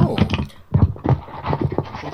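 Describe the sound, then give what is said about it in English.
A microphone is knocked over by extravagant hand gestures, producing a jumble of muffled thumps, scrapes and rustling handling noise in uneven bursts, with a brief lull in the middle and no speech. “Yeah, sorry, I extravagant hand gestures and I knocked over the mic.”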